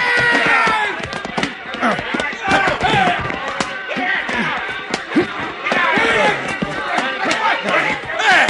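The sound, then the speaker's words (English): A chaotic brawl as half a dozen men erupt through the doors of a honky-tonk, the Jug of Blood, into the street: they shout and yell over one another while sharp thuds, slaps and crashing impacts burst out irregularly, staying loud and frantic throughout. “The doors flew open and half a dozen brawling men erupted in the street.”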